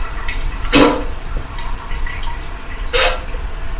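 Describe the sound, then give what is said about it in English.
Steady running water hisses throughout, fairly loud, from a water-sound machine, with two brief louder gushes or splashes breaking through, one near the start and one toward the end. “wait for the running water sound.”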